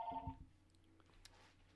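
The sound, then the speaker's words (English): A short electronic telephone ring sounds at the start in a home studio, a brief warbling tone that quickly fades. It is faint, with no one speaking. “Sorry, home studio, can't help it. Phone's ringing.”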